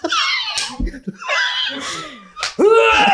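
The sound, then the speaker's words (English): A voice imitates vomiting with loud, strained gagging and retching noises, several harsh bursts in quick succession that end in a drawn-out, groaning heave. “That's how I vomit too.”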